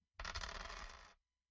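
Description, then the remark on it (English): A brisk rattle of three dice tumbling across a hard surface, a dense clatter lasting about a second before stopping abruptly, with no one talking. “I'm rolling three dice, yes?”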